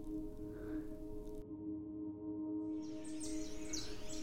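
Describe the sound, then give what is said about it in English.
Birds chirp and twitter on an early spring morning in the second half over a steady low hum that runs throughout. The calls are fairly soft and fill the background without any voices. “I could feel the early sun rays on my sheets. The birds were singing.”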